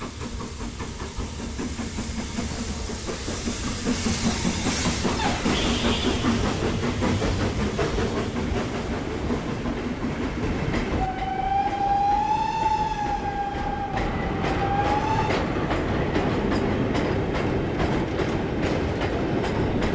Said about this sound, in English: As you heard, the goods train goes straight through the station without stopping.